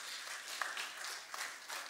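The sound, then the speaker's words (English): An audience in a church applauds together, a steady wash of many hands clapping at once, without any voices rising above it. “Yeah, y'all can clap for that.”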